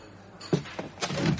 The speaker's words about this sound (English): My eyes fly open. There's a man sitting at my table. The sound of the chair startled me